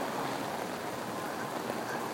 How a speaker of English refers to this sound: Okay, so getting rained on here. Not good.